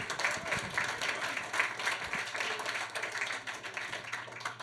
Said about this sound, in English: And that's the biggest applause I'll get tonight, so there we go.